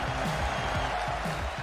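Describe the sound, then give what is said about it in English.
A large cricket stadium crowd at Emirates Old Trafford roars and applauds as Crawley reaches his fourth Test match hundred, a steady, dense wash of noise with mingled voices underneath, holding a constant loud level throughout. “He has lit up Emirates Old Trafford and the crowd are right into it.”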